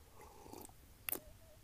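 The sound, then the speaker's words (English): A quiet slurp while drinking: a soft wet sip, then a sharper hissing suck of liquid about half a second later. A faint thin whistle-like tone lingers briefly afterward, with no talking. “Sorry, guys, I slurp.”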